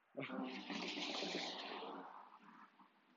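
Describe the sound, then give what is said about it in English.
A car passes by while someone is walking outdoors: a loud, broad rushing whoosh that swells abruptly, holds for a couple of seconds, then gradually fades away. “Excuse the car passing by.”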